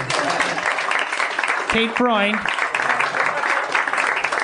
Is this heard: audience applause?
yes